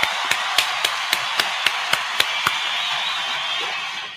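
A round of applause for the sponsor 583 Expressions: about ten sharp, evenly spaced claps over a steady wash of hissy clapping noise that carries on alone after the beats stop, then begins to fade.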